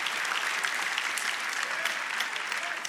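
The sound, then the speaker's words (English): An audience claps together in a dense, steady wash of applause from many hands, holding at an even, fairly loud level for about three seconds with no voices standing out. “We can, come on, clap like you believe it.”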